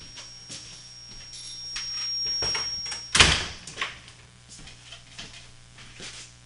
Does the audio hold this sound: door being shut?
yes